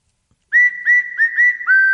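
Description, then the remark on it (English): Someone whistles a short, bright, clear tune of about five quick notes, with a final note held a little longer. No one speaks. “I thought I was going to have to whistle.”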